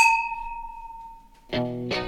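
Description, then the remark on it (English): A single bright clink of wine glasses touching in a toast, its clear ringing tone sustaining and slowly fading for over a second, then a short burst of a harmonic, voice-like sound. “Well, cheers to that.”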